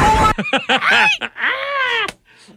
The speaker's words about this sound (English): That's a 32-year-old man screaming right there. That broke some glass.